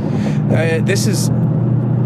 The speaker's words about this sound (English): Let's change lanes and go. God, I love that supercharger whine. Is that not the best? Let's do it again. That is how you pass people when merging onto the 5 freeway.